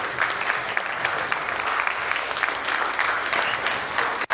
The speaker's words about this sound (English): Would you please welcome the new members with a round of applause?